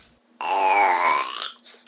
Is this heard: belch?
yes